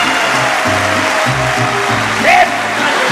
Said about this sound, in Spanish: Aplauso bien bonito para mis muchachos del …, Guanajuato.